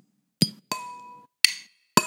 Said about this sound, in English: R.I.P. Nipsey. For real. Should we cheers to Nipsey? Yeah, let's cheers to Nipsey.